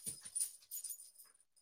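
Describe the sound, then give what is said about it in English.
A dog whimpers softly, giving a few short, thin, high-pitched whines in quick succession, quiet and with no one talking. “Oh, no, I just did something horrible to my dog.”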